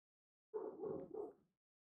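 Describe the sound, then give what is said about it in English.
A female dog, upset about dogs next door, whimpers and yips in a short run of about three tight, whiny bursts lasting roughly a second, clear, with silence before and after and no talking. “She's definitely upset about dogs next door.”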